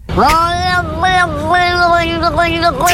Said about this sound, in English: It's a cat with a Cork accent. He's pretty good. Just imagine. Is that an actual cat? Yeah, that's a cat. It's a cat from Cork.